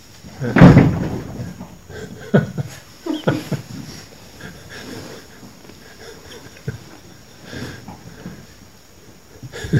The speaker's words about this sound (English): The monkeys are here.